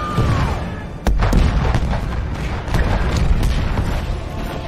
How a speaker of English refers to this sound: Let's fire the cannons. Fire. Fire. Fire! Fire! Fire! Fire!